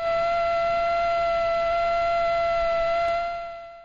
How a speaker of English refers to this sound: That is a male mosquito buzzing its wings at something like 600 hertz, 600 times a second.